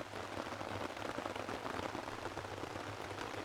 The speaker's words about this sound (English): Just fantastic sound of heavy rain on a tarp, knowing you're safe and dry underneath it. Don't get much better than that.